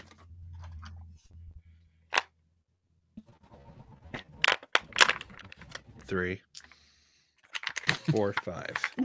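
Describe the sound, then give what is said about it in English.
Dice clatter and click together in quick bursts, fairly loud, as five six-sided dice are rolled and picked out, with a person speaking briefly in between. “You are going to be rolling, that's 5d6 for you.”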